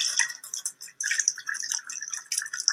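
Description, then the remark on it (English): Water pours steadily into a glass, with a bright, splashy trickle that briefly breaks off and then resumes, clear with no voices. “The water in this glass represents the fact that the space is currently being filled by this man, right?”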